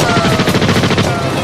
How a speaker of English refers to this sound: The gunmen are unfazed. They continue to launch 10 rounds per second at everything in sight. This reporter is caught in the crossfire as armored piercing slugs ricochet past his head.